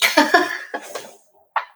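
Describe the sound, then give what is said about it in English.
A short bout of harsh, raspy coughing: two quick bursts, then two weaker hacks, a pause, and one final short cough. “I think I have a talking cough. You're getting it too.”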